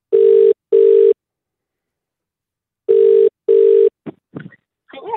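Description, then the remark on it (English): An outgoing call's ringback tone to a listener in Melbourne purrs in two double-ring bursts, a steady low buzzing pulse repeated twice with a pause between, followed by a brief burst of someone answering. “Let's give her a buzz now.”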